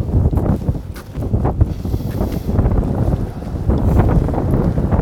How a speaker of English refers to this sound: Coming across Groat Bridge, it's getting a little windy.